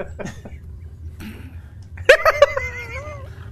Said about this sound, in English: There's a cat over here, apparently.